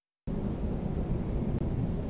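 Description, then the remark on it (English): Deep, continuous rumble of distant thunder rolling steadily for about two seconds at night under looming storm clouds, heavy in the low end with a faint hiss like rain over it, starting abruptly after a brief silence. “In the distance, a rumbling thunder signals the impending battle.”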